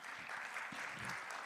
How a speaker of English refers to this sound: So give yourselves a round of applause for that.